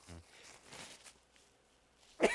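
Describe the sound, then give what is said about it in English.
A few sharp, breathy bursts of sneezing into a microphone, a softer one early on and a loud, harsh one at the end, with quiet stretches between and a brief low voiced sound at the very start. “Those are sneezes, man.”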